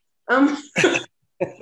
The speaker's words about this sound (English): What was up with that cough?